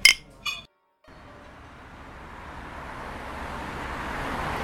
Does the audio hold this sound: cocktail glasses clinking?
yes